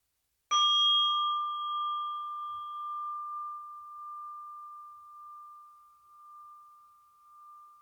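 A single meditation bell is struck once to end a meditation practice, ringing out clearly with a bright attack and a long, slowly fading hum that lingers for several seconds in otherwise silent surroundings.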